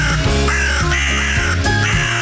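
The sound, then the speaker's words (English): Several harsh crow caws ring out over a loud, steady musical backing with shifting chords, the calls repeating in short bursts across the whole brief stretch. “Time for the early crows, boys.”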